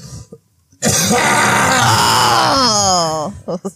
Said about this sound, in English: That's what I do before doing voiceovers. You just cough like that. I just cough really loud.